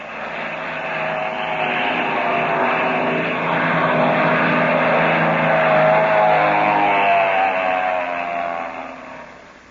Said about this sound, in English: There's a black plane coming over the top of that ridge. Oh. And he's heading straight for us.